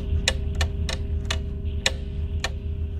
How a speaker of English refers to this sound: The ticking gets slower and slower and slower.